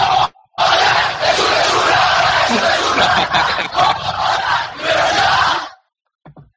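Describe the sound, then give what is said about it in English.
A stadium crowd on a TV broadcast in standard definition roars in celebration of a goal, a loud, sustained wall of cheering and shouting that holds for about five seconds after a brief first burst, then cuts off abruptly. “They scored.”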